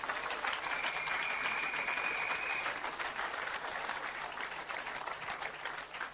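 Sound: audience clapping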